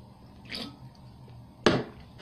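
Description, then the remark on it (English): Someone drinking a can of Bang energy drink, Rainbow Unicorn flavor: a soft, airy sip is followed about a second later by a single loud, sharp wet gulp. No one speaks over the quiet background. “Just want to take a quick water break.”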